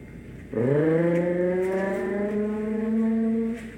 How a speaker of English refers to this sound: Well, I can't hear you over the sound of my engine.